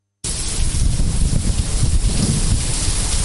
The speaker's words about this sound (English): The observatory says the hurricane signal number 10 will remain in force this afternoon as the severe typhoon edges close at Hong Kong.